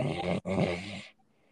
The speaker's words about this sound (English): He's snoring too. You need to get that checked out.